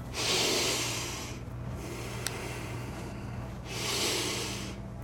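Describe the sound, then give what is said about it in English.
Two long, hissing inhales through the nose from an uncorked jug of maple syrup, each lasting over a second and separated by a short pause, over a faint steady hum. “Grab the jug, uncork it, and just do a deep inhale.”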